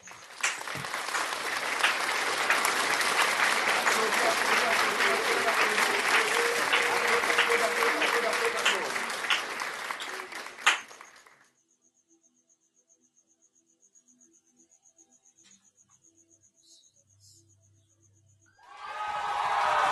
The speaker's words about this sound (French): Applaud, applaud for the Holy Ghost. Applaudis, applaudis pour le Saint-Esprit.